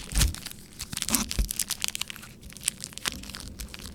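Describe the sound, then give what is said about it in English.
Crisp crunching of a snack being bitten and chewed, with irregular bursts of crackling and crushing over a few seconds, no voices. “I'll take whatever you have just to make the crunchy song.”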